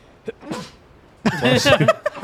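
A short breathy intake, then a loud, voiced sneeze bursts out, trailing off in a few brief vocal sounds. It may be a person performing the sneeze.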